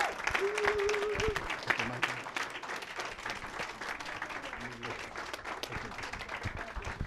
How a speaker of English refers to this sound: Give him a warm welcome of applause as he come and minister to us.